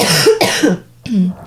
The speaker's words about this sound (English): I have a little cough, everybody, but not, I'm okay. Not that kind of cough. I'm okay. Just a little cough.